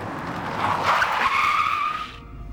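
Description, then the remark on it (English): A cab brakes hard and pulls over to the side of the road, with a loud, sustained tire squeal lasting about two seconds, the screech rising and holding before cutting off into low engine rumble. No voices. “I slammed on the brakes and pulled over on the side of the road.”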